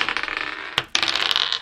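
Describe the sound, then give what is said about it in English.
Dice rolled for initiative in a tabletop role-playing game rattle and clatter across a hard tabletop. They make a dense run of small clicks with one sharp knock midway, fairly loud, with no voices. “Okay, roll initiative.”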